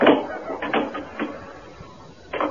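A door being shut: a few quick, sharp mechanical clicks and rattles of the latch, then a pause before a final louder clack as it closes, over a faint background hum.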